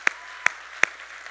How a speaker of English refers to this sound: Now that is amazing, and I want us to give a great big hand clap to each and every single one of them.